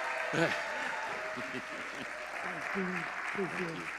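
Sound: audience applause welcoming speaker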